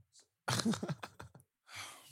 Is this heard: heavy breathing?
yes